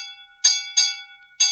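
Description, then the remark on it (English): A ship's bell aboard the Sybil Gray rings three times in an uneven rhythm, each bright metallic strike hanging on with a sustained shimmering tone. It is clear, with no voices; the ship lies drifting in fog at night with her engine stopped. “Silence all ship's bells.”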